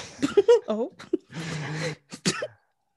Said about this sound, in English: Me clear my throat.